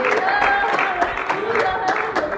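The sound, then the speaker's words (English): An audience claps hands in praise, a steady wash of applause with sharper clap bursts roughly every half second, mixed with sustained voices calling and cheering throughout. “Try to give him a hand clap of praise.”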